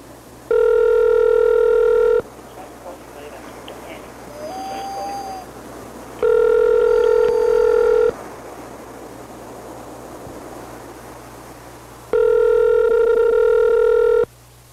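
A phone line rings out three times, each steady electronic ring lasting about two seconds with roughly four-second gaps of faint line hiss between, loud, with no one speaking.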